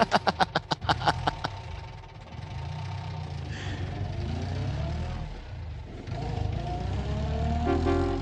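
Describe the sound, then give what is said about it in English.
A car engine cranks with a quick run of sharp rhythmic pulses, then settles into a steady rumbling drive on a highway with a humming, shifting tonal drone over it. No one speaks. “A car driving.”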